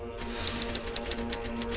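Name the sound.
typewriter keys typing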